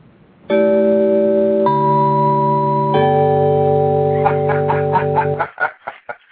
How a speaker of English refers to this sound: And let me put the little buzzer on here.